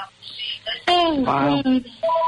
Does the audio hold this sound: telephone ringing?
yes